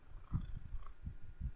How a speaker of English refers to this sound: Remember, listen to him. Listen to his purring. Come on, in the mic, bub. Yes. He's very purry. He's always been that way. He's good for your blood pressure. He's a good boy.